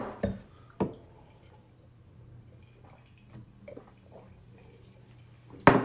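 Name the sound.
glasses clinking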